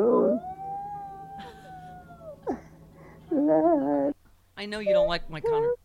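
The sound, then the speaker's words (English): A person imitates a mini schnauzer named Katie howling along to singing, with long wavering tonal howls rising and falling, followed by shorter yelping bursts, loud with no ordinary speech. “I know you don't like Conor McGregor, but that was a really good Katie, my mini schnauzer.”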